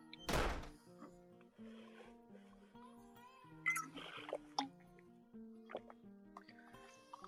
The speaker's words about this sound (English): And the double gets up and walks into the kitchen. Then you hear a distant back door open and close.